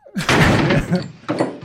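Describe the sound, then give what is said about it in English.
A loud, wet thwack of a steak slamming into a man, a Foley sound effect: a sharp meaty smack that rumbles briefly, followed by a second shorter, softer impact. “That guy deserves an Emmy. Yeah. That's a perfect steak thump.”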